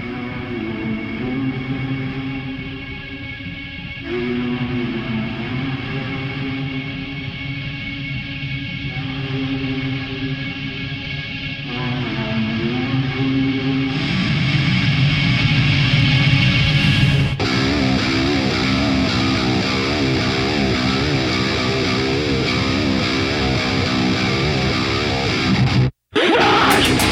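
Loud, dense heavy rock with gritty distorted guitars and a driving pace, growing thicker and more intense partway through, with a brief sudden cutout near the end; no talking.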